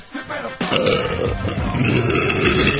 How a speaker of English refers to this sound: Even your burps. Like, just seem very hoarse.